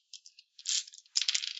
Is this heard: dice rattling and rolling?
yes